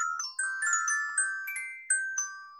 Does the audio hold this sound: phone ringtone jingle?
yes